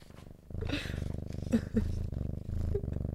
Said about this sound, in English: and they were like, just an intermittent purring moment.